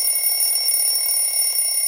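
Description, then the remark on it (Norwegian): A phone timer alarm goes off, a steady, high electronic tone with sharp bright harmonics that rings continuously and fairly loud, with no one speaking. “Jeg var så opptatt at klokka var ferdig på telefonen, så jeg fulgte ikke med.”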